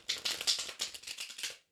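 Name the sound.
tarot cards being shuffled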